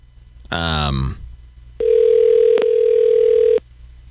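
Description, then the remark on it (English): A brief burst of voice gives way to a single steady telephone ringing tone of a call to a random person in Sweden, a loud, even electronic hum lasting nearly two seconds before cutting off. “Making a phone call. Calling.”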